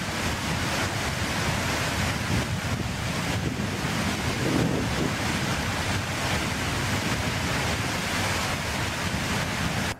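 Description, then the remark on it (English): A steady, loud roar of rushing water from a waterfall, unbroken for the whole stretch, with a dense, hissing wash of sound and no voices. “the video clip of this waterfall. Make sure the audio is on there, Sig.”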